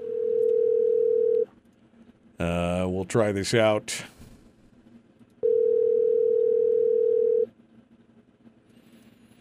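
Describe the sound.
A telephone ringing tone sounds twice as a steady, fairly loud hum, each ring lasting about two seconds with a pause between, and a man briefly speaks in the gap.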